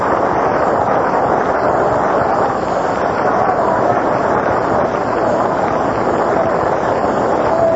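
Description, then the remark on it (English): A ballpark crowd at a World Series game against Detroit applauds Hank Baroy in a steady, dense wash of clapping and crowd noise that holds at an even loudness for the whole stretch, with no clear voice rising above it. “There's a round of applause for Hank Baroy.”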